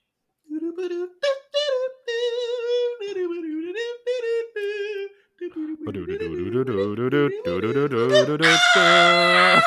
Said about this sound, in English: That damn Raven's back. Fucking Ravens.